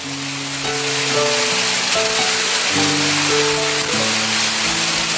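Steady rain pattering on a surface, a dense continuous hiss, with soft sustained musical chords playing over it throughout.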